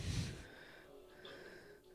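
A single sharp nasal sniff bursts out at the start, like a quick snort, then fades into a quiet, steady background hum with no talking.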